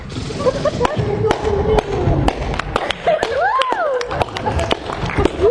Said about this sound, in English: Whipsnake breaks off, bullets pierce the night, singing off the rocks around him.